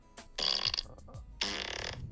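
Two short, buzzy fart sounds, fairly soft, separated by a brief pause, with no talking.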